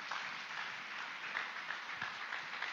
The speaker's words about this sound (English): Give Jesus a hand clap if you can.